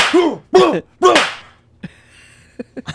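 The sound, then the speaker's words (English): Three loud, sharp slaps land in quick, even succession, each with a brief whooshing ring. A few faint taps and clicks follow in the quieter moment afterward. “nothing better to end a bit than just a barrage of slaps, I suppose.”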